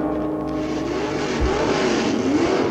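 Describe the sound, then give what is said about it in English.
A car engine in a film scene hums loudly and steadily, its pitch swelling and rising slightly as if revving, with no one driving the car. A brief low thump partway through is the car door knocking a man. No voices. “Car door gets him.”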